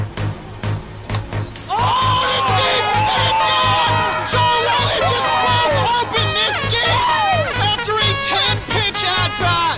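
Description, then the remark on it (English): A large stadium crowd roars and cheers, many voices whooping and shouting over a steady rhythmic thump; the noise surges loud after a brief quieter opening and stays dense throughout. “This one trying a little garner, a little respect from the crowd.”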